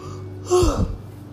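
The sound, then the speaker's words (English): A single short yawn, fairly loud: a breathy rush of air with a brief falling vocal tone, surrounded by quiet background noise and no talking. “Gonna yawn a bunch.”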